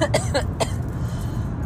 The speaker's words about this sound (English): Oh, I'm coughing. Unless you couldn't tell, or as if you couldn't tell, I'm coughing.